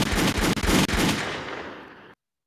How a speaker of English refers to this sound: Don't fucking play with me, and y'all don't got sound effects. Bitch, gunshot.